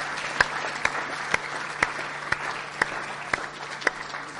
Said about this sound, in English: One more round of applause and kind of like woot woot for these guys.